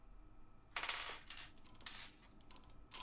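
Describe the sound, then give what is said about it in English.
A pair of ten-sided percentage dice, rolled for a bet in silver, clatters across a tabletop in a quick run of rattling clicks and bounces that lasts a couple of seconds, with no one talking. “So roll 2d10.”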